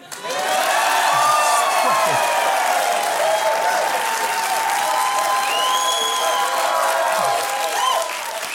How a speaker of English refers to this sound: But I'm trying to get nominated for an Emmy this season, so when I turn back, please applaud.